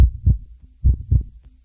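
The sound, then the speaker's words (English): A deep, pounding heartbeat thumps in paired lub-dub beats, low and heavy, repeating roughly once per second with brief quiet gaps between, no voices present. “Hear that heart-pumping adrenaline rush?”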